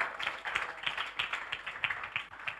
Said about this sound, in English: Come on, clap your hands